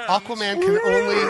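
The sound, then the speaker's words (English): A person's voice imitates a sea creature with a drawn-out, low, moaning call whose pitch slides and wavers, fairly loud for about a second and a half. “Sea creature sounds again, so perfect.”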